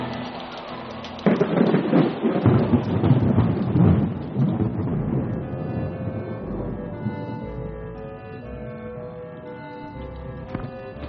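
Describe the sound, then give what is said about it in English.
A heavy thunderstorm: a loud crack of thunder breaks in and rolls into a long rumble over steady rain, then fades to a softer rain with soft grumbling. “I'd rather take my chances there than out in this fabricated storm.”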